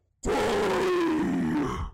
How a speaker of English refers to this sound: So that's the boss. Yes, and you hear a giant roar.